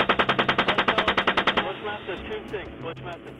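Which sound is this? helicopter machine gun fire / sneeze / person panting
helicopter machine gun fire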